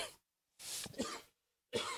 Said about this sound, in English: Sorry about that. But, yeah, just a cough that just won't go away now.